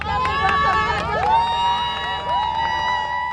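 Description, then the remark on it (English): A lively crowd of teachers, parents and alumni cheers and whoops outdoors at a school entrance as school buses pull up, with high voices shouting and rising calls over a steady wash of applause-like noise, sustained throughout. “Teachers, parents, and alumni gather around the entrance and begin to cheer as buses pull up.”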